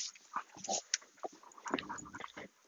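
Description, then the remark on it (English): A dog growls at another dog in short, rough bursts with a few whiny, snorting vocalizations mixed in, fairly quiet, with no one talking. “Oh, as I say that, he growls at my dog.”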